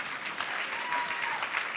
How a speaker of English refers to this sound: you can clap.